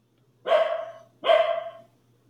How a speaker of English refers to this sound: Dogs barking in the background.